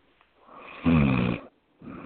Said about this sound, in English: Please tell me that you're not snoring.